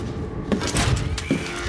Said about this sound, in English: It's the only other room in here. Close the door.